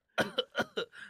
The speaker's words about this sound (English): That was a fake cough, man, but I was convinced.